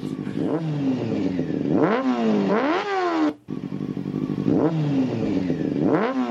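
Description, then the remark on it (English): Two motorcycles ride on the Autobahn, a motorcycle engine revving loudly, its pitch climbing and falling in repeated sweeps over a steady rumbling idle, with a brief cut partway through and no voices. “We're both on the motorcycles yelling compliments.”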